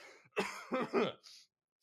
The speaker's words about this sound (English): let me clear my throat for a minute.